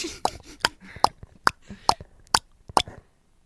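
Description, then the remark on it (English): Someone mimics a car's turn signal with sharp mouth clicks, about eight evenly spaced ticks at a steady pace, each crisp and bright, with no talking. “And then putting on a turning signal.”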